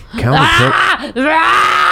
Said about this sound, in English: I'm sorry, listeners. I'm like, you just got like 30 seconds of screaming. Hey, this is 30 seconds of screaming. This is 30 seconds of rage.